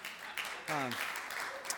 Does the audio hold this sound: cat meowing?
no